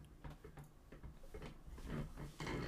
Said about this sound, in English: Well, my chair squeaks. I even lubed it all up and it still squeaks.